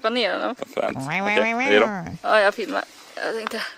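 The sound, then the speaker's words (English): A bullfrog calls in deep, drawn-out, moo-like groans, several loud bursts in a row with short breaks between them. “Oh, fucking bullfrog.”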